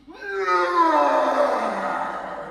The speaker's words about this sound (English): What was that? There's some kind of hell beast outside the door.